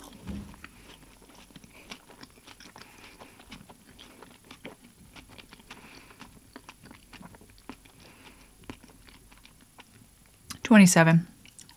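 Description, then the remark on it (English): Soft chewing of marshmallow Peeps candy, chewed at least nine times: quiet, sticky, repeated mouth clicks and squishes at an irregular rhythm, ending with a brief loud vocal burst. “He's had to chew them at least 9 times.”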